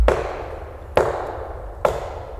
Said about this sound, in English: McCall shot his gun at a nearby tree as a warning.